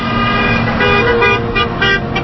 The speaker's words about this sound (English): a busy road outside of the AK Steelworks mill in Middletown, Ohio, trucks and cars speed past honking support for the picketers.